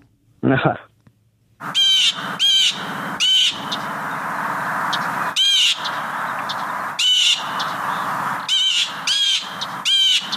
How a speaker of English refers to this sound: Man, that call just says get out of town, doesn't it? Yeah, I'm referring it to an annoying sound, and I'd have to go with the blue jay. You are correct.